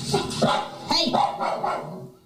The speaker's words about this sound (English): It's a common response to this kind of barking.